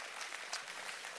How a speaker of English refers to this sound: Why don't we all stand up? Can we just give these people a big hand clap? Isn't that fantastic?